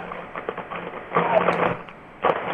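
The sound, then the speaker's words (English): A blender grinding up a rat, heard through a phone set down beside it: a steady low hum breaking into loud, harsh crunching and rattling bursts as the rat's bones are cracked and chewed up, then surging again near the end. “Those are bones that are all getting chewed up into the blender.”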